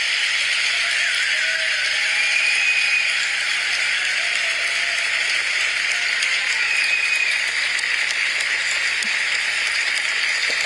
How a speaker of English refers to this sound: Long applause. They fucking love him. It's amazing how strongly people feel about that.